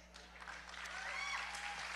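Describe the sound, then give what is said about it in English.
A church audience at Living Word applauds steadily, a dense wash of many hands clapping at a fairly even loudness, with a few faint whoops and shouts rising above the clapping. “No, y'all didn't clap for yourselves.”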